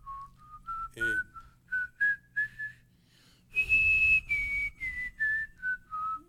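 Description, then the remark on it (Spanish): Someone whistles a quick, birdlike tune: a string of short, clear notes gliding up and down in pitch, with a louder, higher-pitched run in the middle before tapering off. “Parece que se soltó un loro por ahí.”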